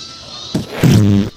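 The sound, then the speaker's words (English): A short burst followed by a sustained, buzzy low-pitched blat lasting about half a second, loud, a fart noise played from a recording of fart noises. “10 hours of fart noises.”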